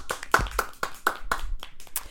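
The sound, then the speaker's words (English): A short burst of hand clapping from a few people, with quick, uneven, sharp claps overlapping for about two seconds at moderate loudness, and no talking. “But I will like to do a round of applause for us doing it so many months by ourselves.”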